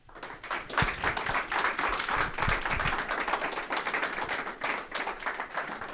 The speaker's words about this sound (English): So let's give a round of applause and bring up our panel.